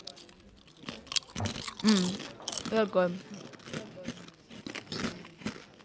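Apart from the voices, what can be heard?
crunching chips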